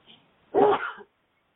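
A single sharp, loud sneeze bursts out, lasting about half a second with a quick breathy tail before quiet returns.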